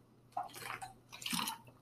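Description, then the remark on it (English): Two short, wet slurping sips of water, soft and quiet, with a brief pause between them and no talking. “I'll take a little sip of water.”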